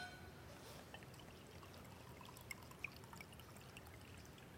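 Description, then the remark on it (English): A steady, quiet trickle of wine pouring into a cup, continuous for a few seconds with a couple of faint clinks and no one talking. “he poured it in a cup and he held it and he said, "This wine is my blood poured out for your forgiveness.”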